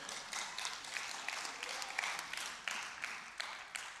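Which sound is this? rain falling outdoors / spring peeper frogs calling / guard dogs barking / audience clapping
audience clapping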